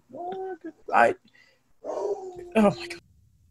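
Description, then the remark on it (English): A dog barks twice in sharp bursts, between drawn-out whiny, howl-like vocal tones, loud with short pauses between. “I'm trying to translate, but my dog is not in a good mood.”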